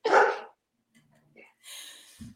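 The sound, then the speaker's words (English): A dog barks excitedly: one loud, sharp bark, a brief pause with faint sounds, then another burst of agitated, higher-pitched barking. “And then my dog going crazy because he probably in shock.”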